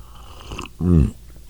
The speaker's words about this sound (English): Have another sip of coffee.